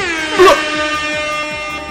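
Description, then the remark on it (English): A loud, sustained air horn blast, blown in celebration, with a bright, harmonic-rich tone that swells at the start and holds steadily for about two seconds, heard alone without talking. “I wanted to ask you permission to blast an air horn just in celebration for girl tees.”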